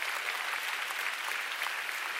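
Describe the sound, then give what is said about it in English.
An audience applauds God steadily, a dense, even wash of many hands clapping at once, fairly loud and sustained for a couple of seconds with no voices standing out. “Come on, let's give God a big round of applause.”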